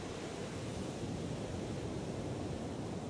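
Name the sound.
sea waves and surf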